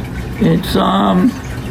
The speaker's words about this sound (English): Can you turn up the waterfall? I hear them too well.